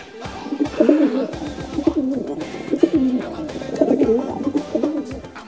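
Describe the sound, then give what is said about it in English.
A pigeon coos repeatedly, low throaty warbling calls rolling one into the next in a steady, agitated rhythm with no one talking. “I totally forgot to mention Battle Pigeon. It's getting kind of annoyed now.”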